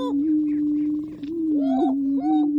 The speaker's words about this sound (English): We leave you this week in the middle of a lek. Leks are breeding grounds where certain species like these male greater prairie chickens perform display rituals and compete for the affections of females.